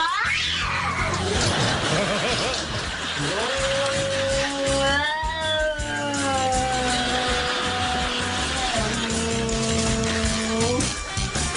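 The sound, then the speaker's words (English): A black cat named Buddy yowls at its own reflection in a mirror: long, drawn-out, loud yowls that rise and waver in pitch, stretching over several seconds with hardly a break, over a steady background hiss. “This is our sweet, loving cat before he finds himself in the mirror.”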